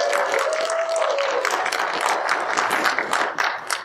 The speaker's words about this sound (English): And it's entitled, I want to hear a big round of applause, and it's The Last Man on Earth.